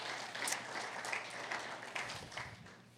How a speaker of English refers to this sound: Can we give our worship band just a big hand clap? Aren't they amazing?